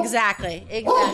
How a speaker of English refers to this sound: Luckily today, Ozzy's been barking between episodes.